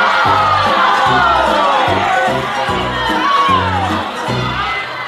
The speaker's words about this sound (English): The crowd screams. I heard people in the crowd renouncing their faith right there, just shouting out. Hail Satan!